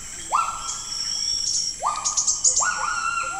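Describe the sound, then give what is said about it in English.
Three rising, sustained whistled bird calls sound over a dense, steady hum of insects in a Borneo rainforest, with brief higher chirps scattered between them. “A bird?”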